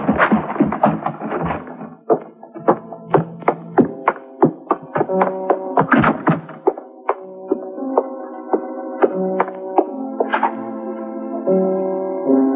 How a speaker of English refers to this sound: When I heard the front door slam, I started kicking my way out. The paneling was heavy, and it cost me a torn trouser leg and a scraped shin before I made it.